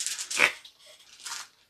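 A squeaky serpentine belt outside gives two harsh, high-pitched squeals, the first louder with a shrill tonal peak and the second a little softer, with no voices.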